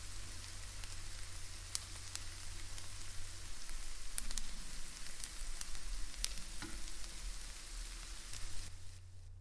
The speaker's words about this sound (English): while it may sound like bacon on a frying pan, it's the sun cooking the back of your neck because it's hot as hell outside.